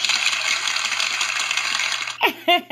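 A recorded applause sound effect, a steady wash of dense, crackling, overlapping claps, runs for about two seconds before cutting off as a voice begins speaking.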